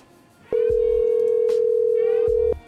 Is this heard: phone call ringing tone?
yes